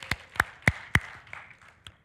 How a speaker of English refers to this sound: It's worthy of a clap.